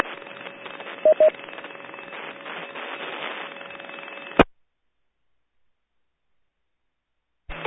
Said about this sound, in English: There was another station, pure static. Give it one more try.